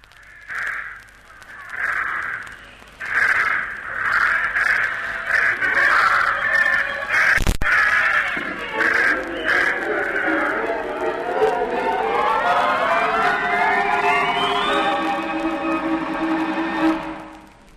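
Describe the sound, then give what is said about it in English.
A flock of birds released into the air caws harshly in repeated loud bursts, then the calls fade under a swelling, rising tonal sound that builds toward the end. “Send those birds up and I'll be off.”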